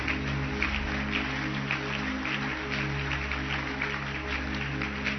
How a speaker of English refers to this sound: Clap your hands for them as they go.